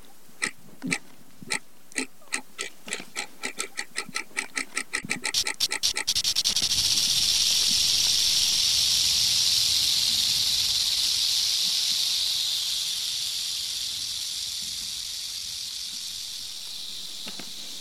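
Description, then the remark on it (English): A rattlesnake's rattle starts as separate dry clicks that speed up, then merges into a loud, continuous hissing buzz that slowly fades. No voices are heard. “I pictured it shaking its tail as a warning, getting ready to pounce.”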